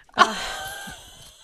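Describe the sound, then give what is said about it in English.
A pug lets out a single wheezy, snorting snore, starting with a sharp rasp and trailing off into a breathy, fading rattle. No one speaks. “You got a little snore for the audio.”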